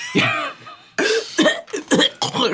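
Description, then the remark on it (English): Someone coughs in a rough, voiced fit: one long drawn-out cough, then four or five short harsh bursts in quick succession, with no other speech. “Coughing.”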